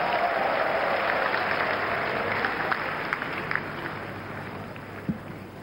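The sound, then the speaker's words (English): A church audience claps for Jesus in a dense, sustained wash of applause that fills the whole stretch, easing slightly toward the end, with a few sharper claps standing out. “If you believe that, sit and clap for Jesus.”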